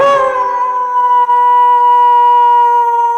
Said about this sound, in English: Well, I think if you get a right answer, it'll be a wolf howl.